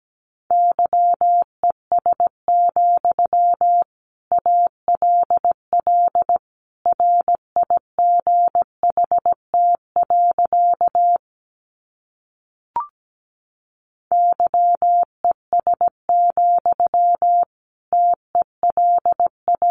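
Morse code sentences made from the top 500 words, sent at 17 words per minute: a steady, mid-high beeping tone keyed in quick short and long bursts, with a brief pause and a faint click partway through and no voices.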